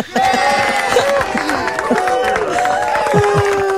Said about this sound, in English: Mate, that's getting a cheer.